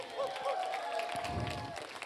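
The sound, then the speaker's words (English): A crowd claps and cheers steadily, cheering on a participant going as fast as he can to a door and back, with a dense wash of applause and scattered whoops and raised voices rising above it for a couple of seconds. “Hey, let's cheer him on.”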